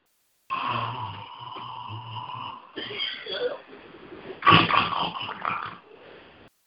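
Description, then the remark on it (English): A person imitates snoring: a long wheezy, rattling breath with a low rumble, followed by several shorter gurgling, snorting exhales, fairly loud and alone. “But because I'm full, I'm snoring.”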